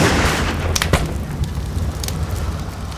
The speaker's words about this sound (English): I could still hear distant gunfire when we pulled off the road.